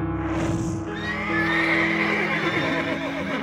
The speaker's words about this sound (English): We burn it, make something off the insurance, but I'm not letting a single one of these damn horses go with it. I'll start herding them out.